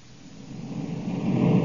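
A deep, noisy engine roar from Corey's spaceship landing swells steadily louder over a couple of seconds, a rough rumbling wash with no voices over it.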